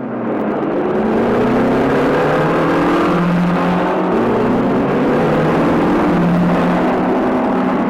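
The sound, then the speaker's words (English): Several cars race, 1963 models with stick shifts plus a 1958 Volvo with over 120,000 miles, two Volvos among them. Their engines roar loudly as they accelerate hard, pitch climbing, dropping with a gear shift, then climbing again in one continuous rush of engine noise with no voices. “Every one of these cars is a 1963 model with a stick shift. Except this one, another Volvo, a 1958 model with over 120,000 miles on it.”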